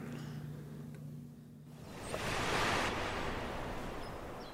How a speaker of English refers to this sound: And I'm looking down at the water. A few seagulls in the water flying around. It's coming up. And it got like a little itty bitty wave that'll come up. Watch this. You probably hear it like, let's see, right now